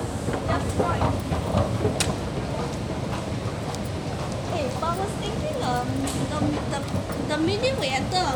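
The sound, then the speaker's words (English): A train pulls into a station with a steady, loud rumble and rattling, faint squealing tones rising over it, while people murmur on the platform. “And the train is here, just finally at last.”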